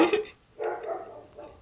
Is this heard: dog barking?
yes